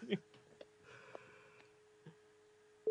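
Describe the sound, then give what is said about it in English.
A telephone busy tone after a call ends: a faint, steady low beep hums underneath, then a loud tone cuts in right at the end, with a few soft clicks and breaths before it. “It's busy.”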